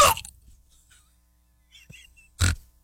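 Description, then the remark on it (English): Two abrupt hiccups, one at the start and a louder one near the end, separated by a quiet stretch with a few faint breathy noises. “Now you've got the hiccups.”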